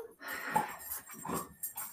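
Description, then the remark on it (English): A dog whimpers and grunts in a quick series of breathy sounds, small whines mixed with snuffly grunts over about two seconds, with no talking. “I have never met a dog that makes as many noises as your freaking dog.”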